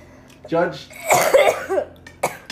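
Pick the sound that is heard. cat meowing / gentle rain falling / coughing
coughing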